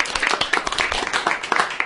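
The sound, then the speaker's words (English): A studio audience at a True Tales Radio storytelling night applauds, with dense, steady clapping from many hands filling the whole stretch at a fairly loud, even level with no pauses. “You deserve a round of applause, too.”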